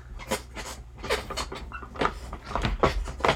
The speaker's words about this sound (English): Stop moving in your chair so much, dude. Jesus.